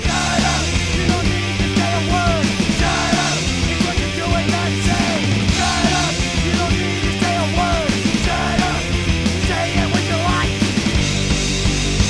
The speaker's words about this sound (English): He sang on the choruses, actually. The choruses go, it's like a gang vocal yelling, shut up, you don't need to say a word. Shut up, it's what you do and not say.